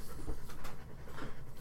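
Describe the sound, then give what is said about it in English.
A dog pants rapidly and steadily, a breathy rhythmic huffing that continues throughout at a moderate volume, with no voices present. “I thought the dog was going to chip in then.”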